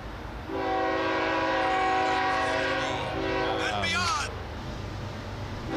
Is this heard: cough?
no